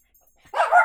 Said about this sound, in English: Shut your mouth, dog.